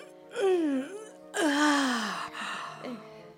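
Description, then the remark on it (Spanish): A drawn-out groaning yawn, its voiced pitch sliding downward, followed by a second longer yawn and a brief trailing moan, with no talking. “Hattie gruñó y volvió a bostezar.”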